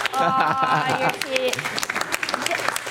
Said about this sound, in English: that was the worst applause break ever on this show.